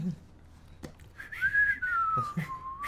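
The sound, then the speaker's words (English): A person whistles terribly along with a man, a single long, wobbly tone that rises and then droops unsteadily for about two seconds, moderately loud, with faint murmuring around it. “Yeah, I go walk over to him and start whistling terribly with him.”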